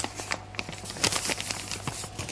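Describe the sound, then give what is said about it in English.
A sheet of paper is crumpled as a demonstration during a church talk, producing a steady stream of dry, irregular crackles and crinkles for a couple of seconds, fairly quiet, with a faint low hum underneath and no talking. “We're still a bit creased, just like this sheet of paper.”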